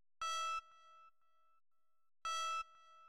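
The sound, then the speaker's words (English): Faint electronic beeping: two short, bright, buzzy tones spaced about two seconds apart, each leaving a brief ringing tail, with near silence between them and no voices. “You start to hear a very faint beeping sound.”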